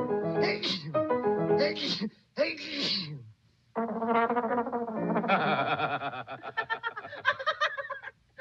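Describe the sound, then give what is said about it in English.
A trombonist sneezes in the middle of a frantic, brassy novelty tune on a record, the honking horn phrases breaking off briefly before the busy ensemble carries on loudly. “in which a tromboner commits a real boner by sneezing during the middle of the famously frantic tune, causing ceaseless mockery.”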